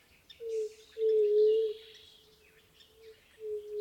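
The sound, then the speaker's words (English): Low, hollow coos of white-tipped doves sound in a drawn-out series of steady notes. The strongest is in the middle, and fainter bird or insect chatter fills the background. “Oh my, the low and resonant coos of white-tipped doves.”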